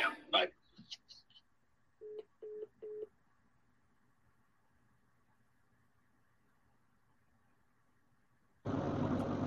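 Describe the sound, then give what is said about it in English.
A studio phone line fails to connect, giving three quick, evenly spaced busy-signal beeps over a faint line hum, after an opening clatter, then a sudden burst of loud static hiss cuts in at the end. “My personal phone's trying to connect, but the studio phone won't connect.”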